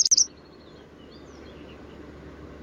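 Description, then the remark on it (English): A quick burst of high, jingling serin song opens, then fades into a low background hum before a single bright note returns at the very end. “It was a Serin.”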